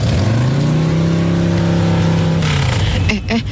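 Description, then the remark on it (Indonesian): A loud motorcycle engine drones steadily as it rides, its pitch holding then slowly dropping, with a brief burst of voices near the end; the motorcycle suddenly wobbles because its tire has been punctured. “Lo kok motor kamu mendadak geol-geol gini sih sayang?”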